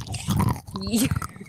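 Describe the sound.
Chewing on crunchy trail mix, soft wet crunches and mouth sounds in quick succession, with a voice briefly talking over the eating partway through.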